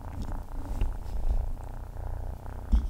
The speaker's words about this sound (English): I can almost hear it purring